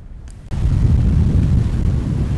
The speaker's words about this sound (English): So we're about 100 yards out on the jetties now, and you can hear the waves both sides. It's a little rougher than I would have assumed considering the lack of real wind or real weather